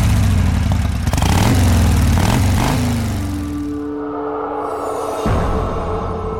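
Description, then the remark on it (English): Motorcycle engines rumble loudly at the 2009 New York Motorcycle Show, rising and falling in pitch as they rev, then settle into a steady, lower idle. No one speaks. “It read, 2009 New York Motorcycle Show.”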